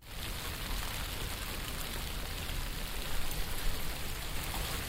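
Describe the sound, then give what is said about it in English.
Steady rain pours down, a dense, continuous hiss of drops spattering on surfaces, even in loudness throughout, with no voices. “It started to rain.”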